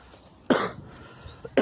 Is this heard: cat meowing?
no